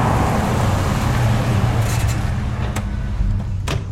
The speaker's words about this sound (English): Veronica sees a truck approach in the distance, and behind it, another vehicle, a Land Rover, follows it closely.